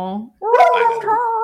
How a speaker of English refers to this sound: Will it fix Betty barking? No. But you know what she's saying? She's saying we're out of time, which is true.